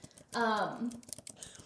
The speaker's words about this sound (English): We're typing in show notes here.